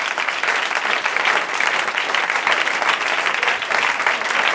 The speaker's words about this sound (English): Adam Cayton-Holland, ladies and gentlemen. Big round of applause.